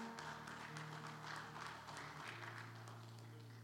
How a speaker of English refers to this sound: Give the kids a hand clap. Amen.